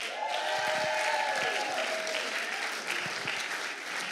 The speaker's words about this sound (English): So let's keep the applause flowing